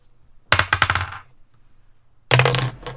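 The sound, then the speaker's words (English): A die rolled for initiative in a tabletop role-playing game clatters across a hard surface in a quick run of sharp, bouncing ticks that fade. Moments later a second, louder rattling scrape follows as the die catches on a microphone; it lands almost on a natural 20. “Fuck, that was almost a nat 20. Same. If only it hadn't gotten fucking caught on my mic.”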